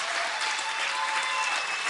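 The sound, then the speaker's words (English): A church audience applauds a worship team and a dancer's anointed dance in a steady, dense wash of clapping that holds at an even, fairly loud level throughout, with no voices standing out above it. “While you're clapping, help me thank God for the young lady who did that incredible anointed dance.”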